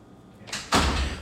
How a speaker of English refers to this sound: If you want to shut the door, you want me to shut the door?